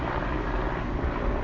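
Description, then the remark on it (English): A police helicopter drones steadily overhead, its low rotor rumble filling the background at a constant, moderate level with no voices. “That's a police helicopter.”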